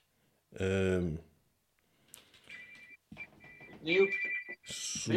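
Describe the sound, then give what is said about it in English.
A phone rings in the background with a thin, steady electronic tone repeating in short bursts, faint and partly under people talking. “ringing it background. Answer it”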